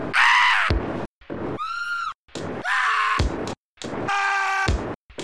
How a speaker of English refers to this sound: Like sampled screams. Like every 5 seconds for a little while. Yeah, they sound like they're pulled from a bank of screaming man samples.